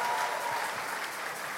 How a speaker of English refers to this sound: And all of you, just clap for yourselves. Just clap for yourselves. You're powerful.